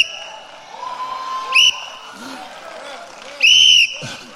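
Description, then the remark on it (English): Two shrill whistle blasts cut through lively murmuring: a short sharp toot, then a longer, louder blast about two seconds later. “See, every time I think about how good God been to me, I blow my whistle.”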